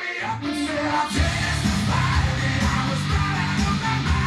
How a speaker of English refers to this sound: I just need the chorus. You know it's screaming. Here it comes.